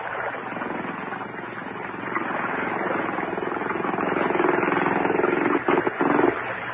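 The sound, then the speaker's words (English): The small motorboat engine of a tender drones steadily, its buzzing, rumbling hum growing gradually louder as the tender comes in, with a few brief dips and sputters near the end. “Oh, here comes the tender.”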